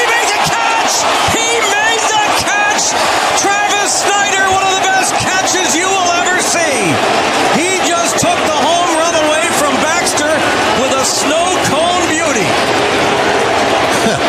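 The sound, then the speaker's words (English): A dense, loud baseball stadium crowd, watching the replay of an outfielder's catch, roars and buzzes continuously, with overlapping shouts, cheers and whoops rising and falling throughout, no single voice standing out from the mass of noise. “Listen to the buzz in this crowd right now.”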